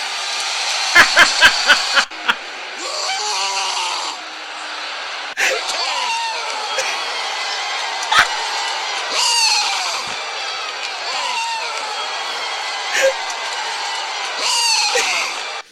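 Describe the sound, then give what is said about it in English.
A series of loud, hoarse male yells and bellows by wrestler Brock Lesnar, cut together one after another as a compilation, over the constant roar of a cheering arena crowd, with a few sharp impact thuds near the start. “There's a collection of Brock Lesnar screams.”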